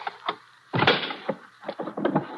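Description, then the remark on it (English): A locked drawer is forced open to look inside: a few light rattles, then a loud, harsh wrenching crack, followed by a series of scraping, clattering knocks as it gives way. No one speaks. “Let's just force it open.”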